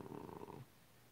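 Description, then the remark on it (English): A female cat gives a short, low, rumbling grunt that sounds like a stalled purr, her purr motor stuck, fairly quiet, fading out after about half a second. No one speaks. “Cat's over there grunting.”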